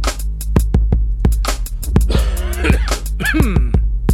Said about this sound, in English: I would give anything to get rid of this cough, dude. It's rough, buddy. Just keep it off my microphone. I'm trying. Green tea is helping, though.